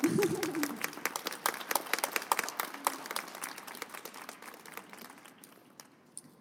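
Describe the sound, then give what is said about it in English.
A crowd applauds after readings at a literary reading event, dense overlapping claps that start strong and gradually thin out and fade over several seconds, with a brief voice at the start. “yes, clap.”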